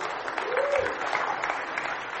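A steady round of applause from a group, dense crackling claps holding an even level for a couple of seconds, with a brief voice rising faintly beneath it.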